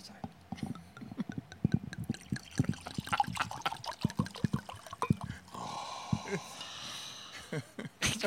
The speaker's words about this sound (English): Can I pour the damn wine now?